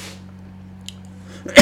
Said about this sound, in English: Excuse me. There's my one cough. Thank you.